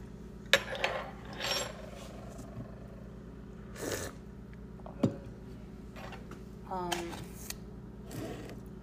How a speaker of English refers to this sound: Yeah, so just stirring the rest of my tea.